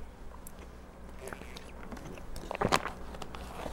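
Someone takes a drink of water: soft sips and gulps over a low steady hum, building to a brief, louder cluster of wet swallowing sounds near the end.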